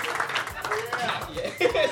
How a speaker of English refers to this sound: Clap, everybody. Clap, clap. Clap, clap.